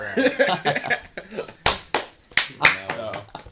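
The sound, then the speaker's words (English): A loud, crisp hand clap cracks out, followed by a few more sharp claps, scattered among people talking. “you get one crisp clap.”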